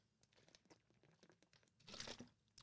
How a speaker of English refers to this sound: Pardon me as I take a drink of water real quick.